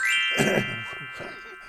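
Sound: chimes ringing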